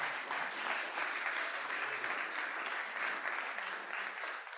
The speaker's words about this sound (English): Come on, clap for Jesus.